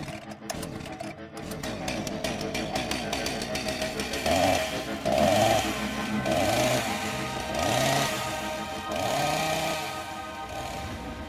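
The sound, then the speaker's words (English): A chainsaw engine buzzes loudly, then revs in a series of rhythmic surges, the pitch climbing and falling about five times with no voices. “tune in after the chainsaw noise for more talk about Hereditary”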